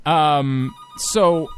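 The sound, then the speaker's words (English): A phone ringtone sounds loud, two tonal electronic bursts with a brief hiss between them, with no one talking over it. “I forgot the phone's just going to keep ringing.”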